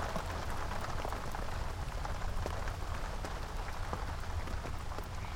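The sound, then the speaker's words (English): Heavy rain pours down in sheets over a campsite, a dense, constant hiss of drops pattering and splashing on surfaces, with no voices and no letup across the whole stretch. “At first, the rain was light, but now it's pouring down in sheets!”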